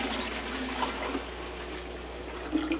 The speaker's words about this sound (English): So I'm going to take my first phytoplankton and I'm just going to pour it into here.